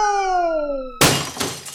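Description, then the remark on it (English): A falling, whistling tone slides downward for a second, then cuts to a loud crash of a TV being thrown away at the tip and smashing, with shattering glass and a second clattering impact before the debris settles. “The TV.”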